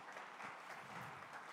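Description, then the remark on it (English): An audience applauds, a dense wash of many hands clapping at once. The sound stays steady and fairly soft for a brief stretch, with no voices over it. “Let's give them a round of applause for being great friends.”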